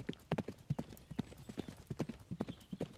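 A white mare galloping in circles in a paddock with a rider, hooves in a steady, rhythmic clip-clop, a quick run of sharp hoofbeats on a hard surface, clear with no talking.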